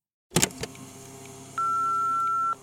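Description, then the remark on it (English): A quick clatter of clicks, then a single steady electronic beep holds for about a second, like a phone's voicemail tone, loud with no voices. “Cindy Helsman, who was most likely listening to a voicemail on her phone.”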